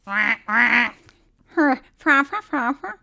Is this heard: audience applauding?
no